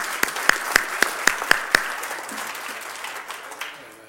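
Audience applause: a few sharp, evenly spaced claps at the start, then a dense crackle of many hands that fades out over about four seconds.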